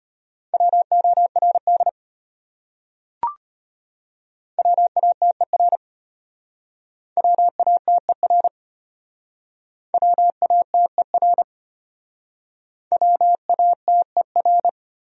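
Morse code tones at 25 words per minute sending common words from a top-100 word list: five quick bursts of rapidly keyed dots and dashes on a steady mid-pitched beep, separated by short pauses, with a brief click after the first group.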